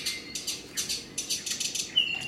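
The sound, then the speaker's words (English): A bird sings a quick series of bright, high-pitched chirps in rapid rhythmic bursts, ending with a thin sustained whistle. The song is fairly faint and heard on its own, without voices. “To transcribe each bird's song, first he slows it down, spending hours analyzing each sound, micro note by micro note.”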